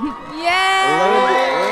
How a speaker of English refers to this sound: We need the sound of a cheering crowd, like at a concert or something.